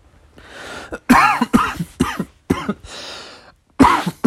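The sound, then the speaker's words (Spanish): A person with a lingering cough, after a week of heavy smoking, coughs in a harsh fit: four raspy coughs in quick succession, then a wheezy breath and one final loud cough. There's no talking. “Ay, aparte me caga porque tengo esta tos que no se me quita.”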